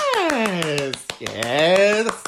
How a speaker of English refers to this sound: Yes. We always start with a round of applause. Don't know why, but just do, because it's a bit like a show, maybe.